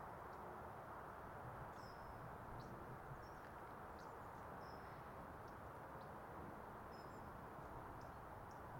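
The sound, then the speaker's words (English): Several short, thin, high-pitched bird calls ring out at intervals over a steady outdoor hiss of wind and rustling in a waterlogged landscape along an old river path near woodland, faint, with no voices. “Yeah, I didn't recognise that high-pitched bird.”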